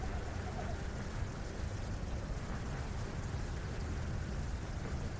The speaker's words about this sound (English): Look, it's raining.